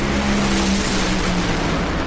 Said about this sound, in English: Billy Torrance powering down the racetrack, and it's Billy Torrance, 3.802 seconds at 322 miles an hour.